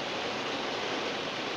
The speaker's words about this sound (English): That's the rain in the background, by the way.